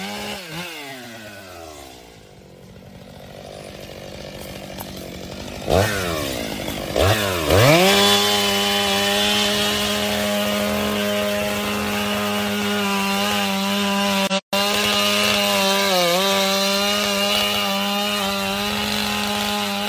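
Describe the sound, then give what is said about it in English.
A chainsaw starts with a few rising revs, then settles into a loud, steady engine whine with slight dips as it bites into wood while cutting down a tree. No one speaks. “Y'all ready to go cut these trees down?”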